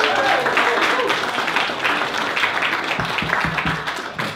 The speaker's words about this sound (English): Thanks everyone for coming. Can we have another round of applause for the library for putting this event on?